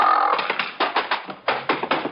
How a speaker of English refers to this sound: This gives me an idea. I figure I can't kick the door open, but the mule can. I climb up on top of him because that's the safest place. Line him up with the door and tickle him under the left hind leg.